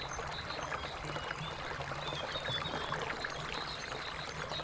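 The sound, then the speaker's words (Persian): Steady rushing and splashing water fills the scene continuously from a modern musical fountain spraying onto a lake of 22,000 cubic metres, with a constant broad hiss and no voices. “از آخرین پله که بالا بری دریاچه رو میبینی و آبنمایی که میگن نخستین آبنمای موزیکال و مدرن خاورمیانه است.”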